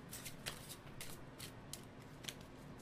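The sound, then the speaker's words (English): A deck of Uno cards being shuffled: a quick run of crisp, papery riffling bursts, steady and fairly soft, with no voices. “We're straight it's shuffle. A blue Uno. Yeah. Straight shuffle, right away.”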